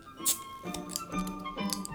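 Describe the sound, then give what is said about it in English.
Clinks and scrapes as a metal bottle opener knocks against a glass bottle of British Bulldog beer, a few sharp taps with faint ringing in between, no one talking. “And is trying to pick up the bottle opener.”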